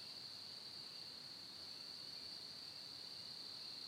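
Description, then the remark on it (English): A steady, high-pitched chorus of crickets trills continuously at a soft, even level, with no voices and only a faint hiss of outdoor background underneath. “To just sit and listen to the crickets.”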